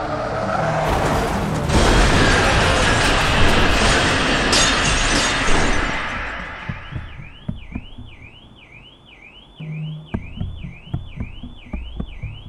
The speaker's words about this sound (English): I'm dazed, hardly conscious as the figure from the other car that's just smashed into me approaches.